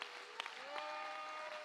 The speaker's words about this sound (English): Clap your hands and give God the glory.